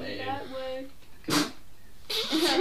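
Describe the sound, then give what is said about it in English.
Two sharp, loud sneezes burst out about a second apart, each a harsh, breathy explosion of noise, following a short stretch of voiced sound at the start. “Bless you.”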